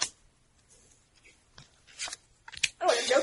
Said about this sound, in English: Everyone can just draw... We're out of the chase now. So you can just draw a regular card.